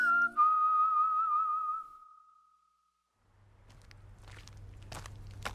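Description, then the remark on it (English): A wavering whistled tone fades into a brief silence, then steady footsteps walk along a dark, empty street, each step a crisp scuff over a low background hum. “Let's go for a walk. The streets are dark and empty,”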